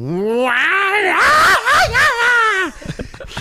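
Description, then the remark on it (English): A human voice mimics the aggressive yowl a cat made on seeing another cat from a window: a loud, rising, wavering cry held for over two seconds, then dropping off abruptly, followed by faint breathy noises. “and the cat suddenly saw the other cat from the window and made a sound that my son, after running screaming into the kitchen, said he thought a tiger had entered wow.”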